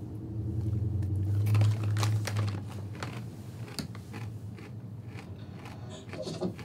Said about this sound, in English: Trap door.